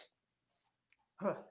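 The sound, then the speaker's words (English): A half-started sneeze: a brief breathy hiss, a pause with a faint click, then a short voiced burst that stops abruptly instead of finishing. “I was like, I didn't know if it was a cough or a sneeze.”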